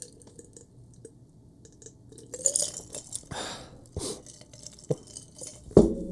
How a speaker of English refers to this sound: Let me get a sip of coffee. It's a Segway coffee.